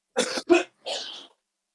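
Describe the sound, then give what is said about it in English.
Two quick, harsh coughs followed by a short raspy throat clear, then silence. “Everybody can just take a cough break.”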